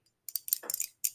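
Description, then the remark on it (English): Glass bottles clink together in a toast: a handful of bright, sharp clinks and a brief rattling cluster, then one final ring. No one speaks. “Come here, clink it.”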